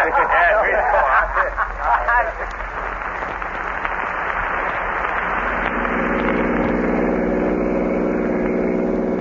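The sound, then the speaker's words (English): A car engine runs steadily throughout as the car pulls over off the road, settling into an even idling hum in the second half, with muffled voices talking over it at the start. “Now, you stay here in the car.”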